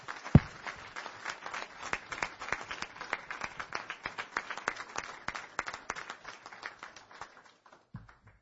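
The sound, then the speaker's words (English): An audience gives a final round of applause before a meeting adjourns, steady dense overlapping hand claps at moderate volume for several seconds that gradually thin out and fade toward the end. “One last round of applause and then we will stand adjourned.”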